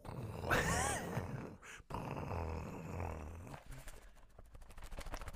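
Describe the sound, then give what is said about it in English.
A voice imitates thunder with loud, low growling rumbles and raspy, breathy bursts that last several seconds, ending in a series of softer fluttering pulses. “I was trying to do thunder.”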